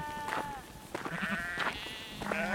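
A ewe cries out in distress on the rocky southern tip of an island, her hind legs jammed in a crack between rock ledges and her chest bleeding; four or five strained, wavering, loud bleats in quick succession against a faint background hiss, with a light southeast wind.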